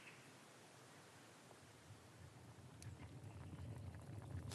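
Two big pans boil on a stove in a convent kitchen during the daytime, with a steady hiss and a low bubbling rumble that swells toward the end, with a few faint clicks and knocks along the way.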